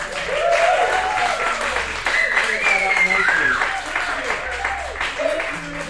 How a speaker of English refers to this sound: We are actually podcasting this, guys. So if you guys want to just give a random round of applause, so it looks like a show, let it in together.